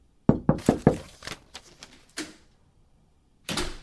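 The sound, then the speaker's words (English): Four loud, rapid knocks on a door in an even rhythm, followed by a few softer trailing taps, a single thump, and then a brief scraping or rustling noise. No one speaks. “the purpose of a knock is not only to alert people in the room to your presence, but to also ask permission to enter said room.”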